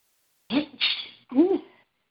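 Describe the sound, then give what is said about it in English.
A single voiced sneeze, fairly loud, with a drawn-out intake and sharp burst, followed by a short vocal sound before silence. “Bless you”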